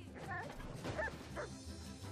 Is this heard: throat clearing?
no